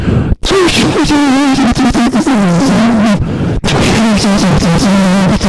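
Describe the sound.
A voice imitates the harsh industrial noise music of a particular musician, a loud, continuous, gritty vocal drone with a wavering, warbling pitch, interrupted only by two very brief pauses.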